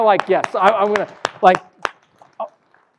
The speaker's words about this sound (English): Yes, you can clap.